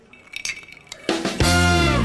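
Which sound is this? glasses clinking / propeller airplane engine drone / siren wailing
glasses clinking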